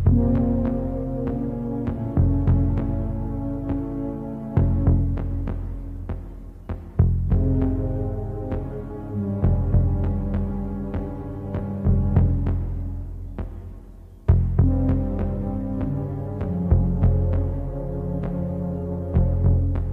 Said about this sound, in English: Because that heartbeat music, the thud music is brilliant, isn't it? And you see that pop up on documentaries and stuff all the time now as well.